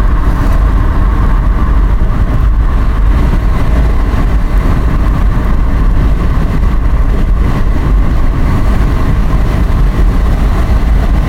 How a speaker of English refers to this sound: My God, what's going on? Well, it's the second ambulance. Oh, no, sorry, second fire truck. Well, already been an ambulance. Jeez, that sounds like something serious.